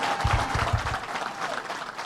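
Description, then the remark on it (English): A crowd breaks into a round of applause for Howard Zemsky of the Empire State Development Corporation: dense steady clapping sustained throughout with some low thumps early on, fairly loud and without any speech over it. “Give Howard Zemsky a big round of applause.”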